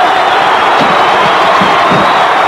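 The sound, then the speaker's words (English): A wrestling crowd at the Boston Garden cheers wildly in a dense, roaring wall of noise, loud and steady throughout, with scattered whoops and shouts rising out of the din, as Bundy and the Dragon come in on Savage. “Pandemonium's broken loose here in the Boston Garden.”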